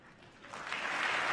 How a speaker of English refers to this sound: They're cheering for questions, folks.